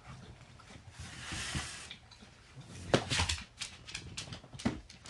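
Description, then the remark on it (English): A dog laps water, a steady run of wet, splashy slurps with a few louder gulps and bursts mixed in, and nobody speaking. “We have a dog that likes to drink way too much water, so here we go.”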